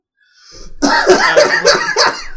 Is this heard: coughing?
yes